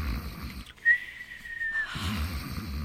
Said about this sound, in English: you promised you wouldn't snore. And the minute you close your eyes, you start it.